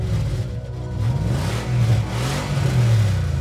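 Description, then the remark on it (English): A muscle car with gold rims and a stick shift rumbles loudly, its deep throaty engine growl rising and falling through a few revs with no one speaking. “My ride had a pimped-out gold rims and a beastly engine.”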